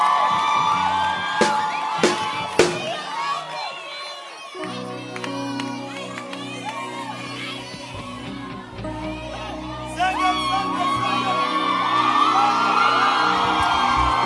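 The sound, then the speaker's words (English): An audience claps and cheers loudly for a girl, with high whoops and shouts over a few sharp hand claps, as steady sustained music tones rise underneath and carry on throughout. “Clap your hands for this beautiful girl.”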